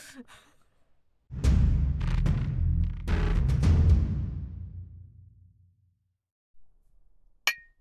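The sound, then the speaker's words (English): Cups clink together in a toast several times in quick succession, the knocks ringing out over a low, lingering rumble that fades, followed by one sharp, isolated tap near the end. “These cups just do so nicely with the clink.”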